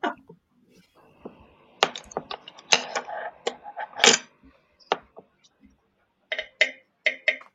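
Rapid typing on a computer keyboard, crisp: bursts of sharp key clicks with brief pauses between, ending in a quick flurry of taps.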